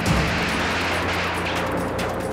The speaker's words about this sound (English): State police helicopter drops it. There is the explosion.